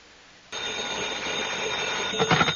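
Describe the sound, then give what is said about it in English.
A telephone rings with a call for Johnny Dollar, starting abruptly, a steady, continuous electric bell-like ring that holds at an even loudness for about two seconds, with no voices. “Your number is ringing, Mr.”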